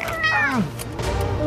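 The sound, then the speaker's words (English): Cats meow: a loud, drawn-out, falling meow is followed by a second, softer cry over a steady low background hum, with no talking. “Why are there so many cats in here?”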